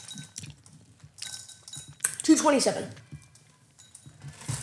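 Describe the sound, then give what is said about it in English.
Nestle Toll House semi-sweet chocolate chips are poured into a heat-proof bowl in a quick rattling cascade of small clicks and clinks lasting about a second, loud against quieter background talk before and after. “It's kind of hard to pour with a microphone in your face.”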